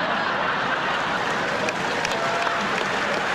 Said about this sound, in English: And the crowd goes wild. Is the craziest thing, the psychosis that goes along with recording a joke you wrote and then putting in the audience reaction.